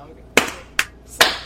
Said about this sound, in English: Golf clap.